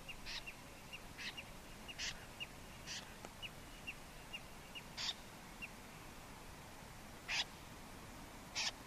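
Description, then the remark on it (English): A migratory snipe arriving on migration gives short, harsh rasping calls in flight as it passes over the microphones at night, repeated at irregular intervals over a steady hiss of night-time background noise, some calls faint, a few louder. “So this is, again, is a bird that's arriving in and calling in flight as it passes over the microphones.”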